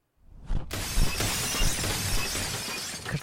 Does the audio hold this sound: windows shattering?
yes